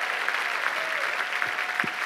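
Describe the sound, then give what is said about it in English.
A church audience claps and cheers in a steady, dense wash of applause, cheering on the stayers in the room, with a few brief whoops and voices rising above the continuous clapping. “Can we cheer on some stayers in the room today?”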